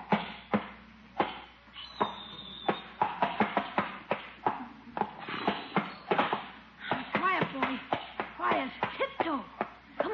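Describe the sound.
A pony's hooves clop on a hard floor inside a house as it is led in through the back door, a loose, uneven string of sharp knocks while voices murmur and exclaim over the steps.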